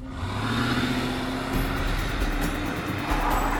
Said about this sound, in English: They waited outside the house for nearly 7 hours, and then they heard her car starting up and speeding away.